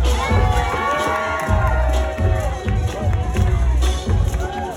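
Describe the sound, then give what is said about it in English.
A dense crowd at a dance party cheers and whoops loudly as people take turns showing off dance moves in the center of a dance circle, with excited shouts rising over a steady thumping bass beat and general hubbub, sustained throughout. “a dance cipher inevitably forms, with people taking turns showing off their moves in the center of the circle to cheers from the crowd.”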